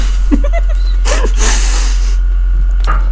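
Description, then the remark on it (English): A sudden sputtering spit-take, a wet, hissy spray of water bursting out over a computer monitor for about a second, framed by short choked vocal noises and a brief gasp afterward. “I was just spit water all over my monitor.”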